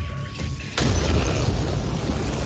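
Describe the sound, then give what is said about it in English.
A faint steady hum gives way to a sudden loud burst of shattering window glass, a sound effect for jumping out a window, followed by a sustained noisy wash of debris that stays loud to the end. “Where is the window jumping sound effect?”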